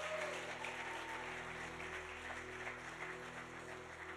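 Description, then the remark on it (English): An audience claps their hands in praise to the Lord after a prayer, a dense, steady wash of applause lasting several seconds, with a low sustained hum running underneath and no one speaking. “Come on, give the Lord a hand clap of praise for what he's done tonight.”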